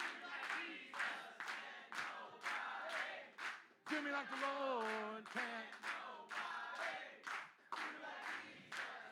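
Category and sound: crowd, audience clapping along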